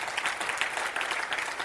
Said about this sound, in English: I'm going to wait while you clap your hands.